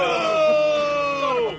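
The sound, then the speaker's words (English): A crowd lets out a long, drawn-out groan of disapproval at the pun "top dog", the voices sliding downward in pitch and fading out over about a second and a half. “Oh, come on, that was great. I disagree with the crowd there.”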